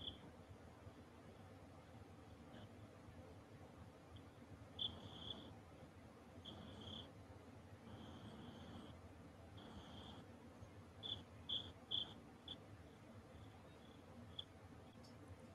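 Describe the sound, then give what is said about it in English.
Crickets chirp at night in short, high-pitched bursts that come in irregular clusters over a low, steady background rumble. The chirping is faint, with no one talking. “Listen to those crickets. Isn't it peaceful, guys?”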